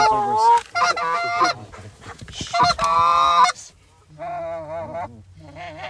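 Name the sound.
geese honking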